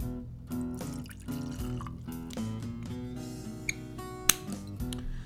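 Pendleton Canadian whiskey pours steadily into a glass for several seconds with a gurgling, rising tone, broken by a couple of sharp glassy clinks near the end.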